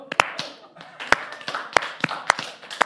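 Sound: slow clap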